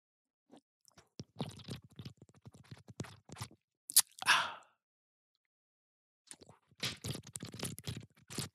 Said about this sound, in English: Those were not bong rips, simply sips from my drink.